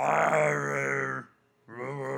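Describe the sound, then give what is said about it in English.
A person's voice imitates a walrus with a loud, drawn-out guttural groan, then a brief pause and a second, shorter groan. “Walruses are more like”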